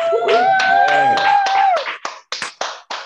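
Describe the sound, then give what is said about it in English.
Scattered clapping from listeners on unmuted microphones, loud and dense at first under a sustained high whistle-like tone, then thinning to a handful of separate sharp claps with short gaps between them. “Unmute your mics. Clap for Trizzy Stacks.”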